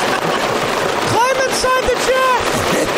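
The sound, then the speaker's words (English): Hail pelts a car windshield in a dense, steady hiss of rapid impacts, loud throughout, while a voice speaks over it for a couple of seconds in the middle. “It's coming down even harder. Yeah, it's really coming down right now.”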